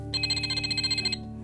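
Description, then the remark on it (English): Ryder's pup pad from Paw Patrol rings with an incoming call: a rapid, trilling electronic ring of bright, high pulses lasting about a second, then stopping abruptly, with a steady low hum underneath. “Chase is roaring and ready to go and ready to help when Ryder gets his call on his pup pad.”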